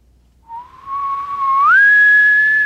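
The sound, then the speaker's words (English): A human caller imitates a far-off elk bugle: one smooth, whistly tone that starts soft, climbs in pitch partway through and holds high and steady as it swells louder, with no talking. “He can do a way off bugle.”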